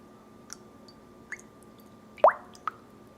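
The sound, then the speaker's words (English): Water being poured, heard as a few sparse drips and plops, with one louder splash near the end. Fairly quiet against a faint hum, with no talking. “Some water.”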